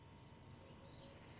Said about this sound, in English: Thank you. I appreciate the cricket sounds.